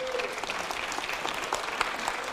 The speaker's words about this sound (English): Come on, clap your hands. Thank God for him.